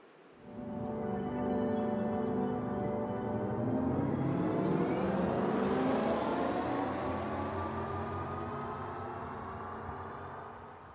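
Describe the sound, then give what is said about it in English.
A synthetic electric car driving sound, a potential sound based on sound genetics for electric cars: a smooth, layered harmonic hum that swells in and rises steadily in pitch like accelerating, then eases slightly, loud and continuous for about ten seconds with no voices. “And now I would like to show you how a potential sound based on the sound genetics for electric cars could sound like.”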